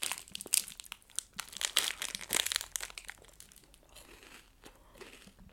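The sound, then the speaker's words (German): Crunchy chewing on a snack bar, a quick irregular run of crisp, crackly bites, louder at first and then softer, steadier munching. No one speaks. “Kurze Pause, ich fresse den noch zu Ende und ich kann mir dabei zusehen.”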